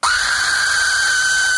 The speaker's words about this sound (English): here is the Aztec death whistle.